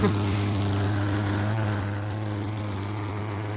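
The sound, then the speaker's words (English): A small motor engine on a ridden ironing board with skateboard wheels runs steadily with a constant, buzzing drone, loud throughout, easing slightly in volume partway through. “It's the same fucking engine.”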